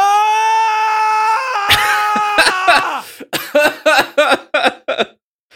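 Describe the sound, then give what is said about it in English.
A loud, sustained high-pitched scream that breaks into rough, strained noise, then several short, rhythmic cries in quick succession. No talking alongside it. “Oh, I can hear her screaming.”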